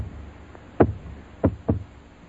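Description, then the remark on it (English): Three solid knocks on a hard surface, a single rap followed by a quick pair, fairly loud over a low background hum, with no voices. “Oh, I's a knocking, and I see you looking out.”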